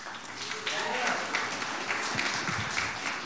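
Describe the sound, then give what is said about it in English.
A crowd claps steadily for the speaker's wife, who has been invited to speak, a dense, even wash of applause at moderate loudness, with a few voices faintly audible underneath. “So give a hand for her.”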